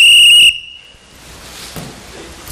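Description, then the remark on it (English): A single loud, shrill referee whistle blast lasting about half a second, cutting off abruptly and leaving only faint background noise. “Ain't even got out of the parking lot and the devil's already blowing the whistle on you.”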